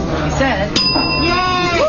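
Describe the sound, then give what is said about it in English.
At a phone bank, volunteers ring a single bright bell to mark a 'no' on the California recall; it strikes partway through and rings on as a high, clear tone for about half a second, over a steady background of people talking. “The sound of the bell meant a no on the recall for volunteers at the phone bank.”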